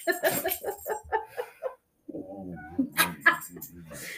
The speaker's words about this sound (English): I have never met a dog that makes as many noises as your freaking dog. And they're so different, and like one right after the other. Like, it's not like some dogs like sometimes bark and sometimes like howl or yodel.